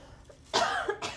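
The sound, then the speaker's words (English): A single loud cough bursts out after a quiet moment, with a short rasping tail and a second smaller hack right after. “Just go ahead and cough, you know.”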